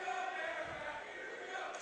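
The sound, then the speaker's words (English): A crowd of Bedford basketball fans chants together, mockingly cheering along with the Merrimack crowd, in a steady, sustained roar, many voices blending into one loud, continuous cheer. “Now, interesting cheer from the Bedford contingent cheering on Merrimack ruthless.”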